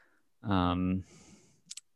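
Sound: computer mouse clicking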